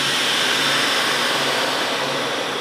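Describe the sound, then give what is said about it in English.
In a processing room, a vacuum sealer seals a double-bagged femur bone, one bone per bag. It runs with a loud, steady mechanical whir and a hiss of air being drawn out, sustained without a break for a few seconds, with no voices. “And sends it through a vacuum sealer.”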